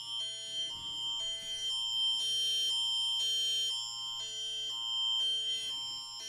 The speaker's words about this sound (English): That is more notifications of other stuff going on.